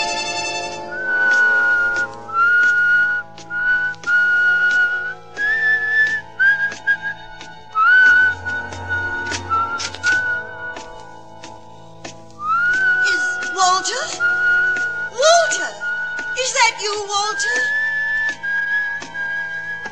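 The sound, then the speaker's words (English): A man whistles a wavering tune, his familiar whistle in the radio drama Life Ends at Midnight: clear sustained notes with slides and trills, over a low background hum and faint clicks, with no talking. “Remember my whistle, huh?”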